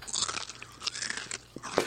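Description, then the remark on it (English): Loud, crunchy chewing, like someone biting into cereal or celery, with dense crackling bursts repeating irregularly over a couple of seconds and no talking. “it sounds like she's shitting Captain Crunch. Or celery.”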